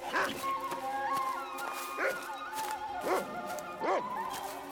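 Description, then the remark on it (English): A dog named Wolf barks and yips excitedly at a nest of baby rattlesnakes, four or five sharp, high-pitched calls spaced about a second apart over a steady background drone. “God darn it, dog. What are you after?”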